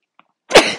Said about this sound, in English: Sneeze. Maybe if you can induce a sneeze, that always feels really fucking good, right?